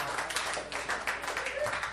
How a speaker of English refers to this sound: Clap for this man and the upcoming debate.